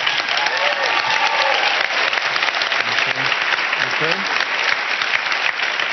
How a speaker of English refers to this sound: I want to ask everybody in the audience today, if you think that this young woman has suffered enough, if you think this young woman has earned the right to claim a happy and productive life going forward, stand up and cheer for her right now.